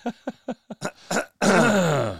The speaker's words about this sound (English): Clear my throat.